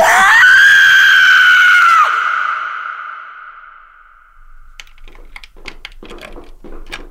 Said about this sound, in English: Scream, …, you have to scream.